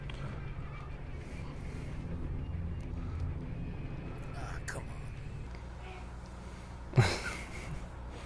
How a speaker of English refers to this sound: Truck driving.